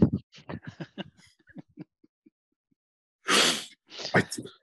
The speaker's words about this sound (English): I'm just getting over COVID, hence why I'm coughing a lot, people.